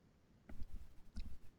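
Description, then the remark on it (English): A few soft clicks and taps on a handheld device, spaced irregularly over a quiet background with no one speaking. “I'm just gonna keep clicking until I see what I land on.”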